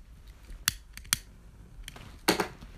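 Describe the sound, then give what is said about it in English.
A voice imitates two people playing tennis with a few sharp clicking pops spaced unevenly, ending in a longer rasping burst, with no talking. “The noise was two people playing tennis in my head.”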